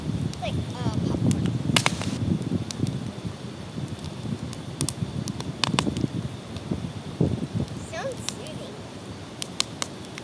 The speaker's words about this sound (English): So yeah, so we'll spare you guys from us talking for a second while you listen to this campfire.